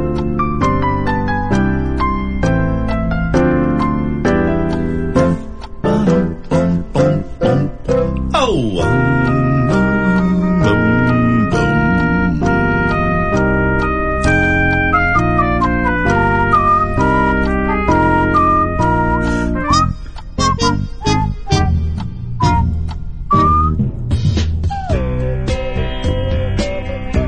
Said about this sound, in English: We play some more waiting music while we wait for the next caller. This is fun. Just a little 5 minute intermission, so...